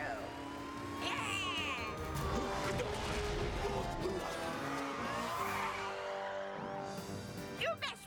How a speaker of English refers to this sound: There comes Grandma driving crazy in a police car.